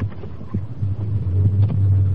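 A steady low engine rumble from a moving car, a deep continuous hum with faint throbbing and light road noise, fairly loud and unbroken, with no voices.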